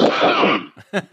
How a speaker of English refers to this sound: Excuse me while I clear my throat.